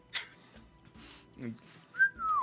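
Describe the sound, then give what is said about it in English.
A person whistles their name as a short phrase, ending in a clear high tone that slides smoothly downward. It comes after a few soft, indistinct vocal sounds and breaths, fairly quiet. “I'm going to tell you, like, I'm going to whistle my name now, okay?”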